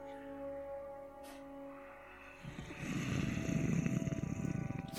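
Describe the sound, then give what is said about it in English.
A person imitates a cat with a low, raspy growl that rumbles in quick pulses, starting midway and growing louder, over a faint steady hum. “Oh, is that a cat purring? No, that was … growling.”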